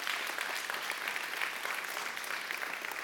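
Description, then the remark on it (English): An audience at Bridgewater claps steadily for its pastors, a dense, sustained wash of many hands clapping at once with no voices standing out, holding an even level throughout. “And then when they get back, you can ask them if they watched online and heard you clap for them.”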